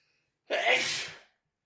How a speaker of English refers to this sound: I'm going to sneeze.